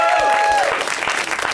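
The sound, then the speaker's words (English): One lone audience member lets out a high, sustained whoop for Florida that trails off after half a second, backed by scattered applause from a small crowd. “One lonely cheer for Florida.”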